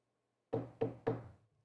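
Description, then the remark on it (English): Three quick, evenly spaced knocks on a wooden surface, solid, each with a short hollow ring, with nothing else around them. “Because, hear me out, knock on wood.”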